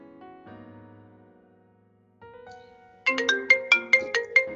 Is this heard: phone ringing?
yes